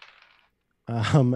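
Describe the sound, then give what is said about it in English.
Dice rattle briefly across a table as an attack is rolled in a tabletop role-playing game, a faint clattering patter for under half a second, followed by a pause before a person begins speaking. “And then do you want me to roll attack for the next one first?”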